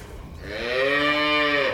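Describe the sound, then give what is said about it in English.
A single long, loud moo from a cow, rising and holding steady for over a second before trailing off, with faint farmyard background noise and no talking. The cattle, including several steers, are in a pen on a farm and are being rounded up to be put out on fields of new grass. “He's rounding up the last of the cattle to put out on his fields, which are now thick with new grass.”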